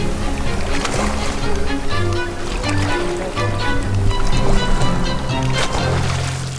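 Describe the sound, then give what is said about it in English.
Rough sea water churns, boils and splashes continuously at the surface as dolphins join a feeding frenzy on a shoal of fish, a dense, steady sloshing with a low rumbling hum running underneath. “Within moments, the dolphins have joined in the feeding frenzy, and as we watch, the surface of the sea churns and boils with activity.”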